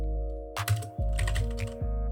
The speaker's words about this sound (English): Oh, you're typing. Yeah, I'll typing in a Polish way so you can like kind of understand it.